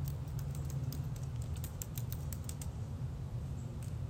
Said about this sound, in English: Keep everything live. I know y'all hear the typing.